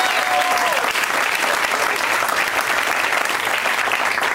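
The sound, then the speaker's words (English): A crowd applauds steadily, a dense, even wash of clapping that stays loud and sustained for several seconds without letting up. “And boy, what a round of applause.”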